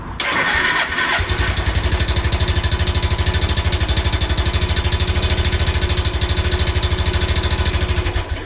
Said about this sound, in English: So the thing that made the best noise was my Suzuki GN250 motorbike, which is freaking awesome, and my little slice of freedom. I thought it was a chainsaw at first.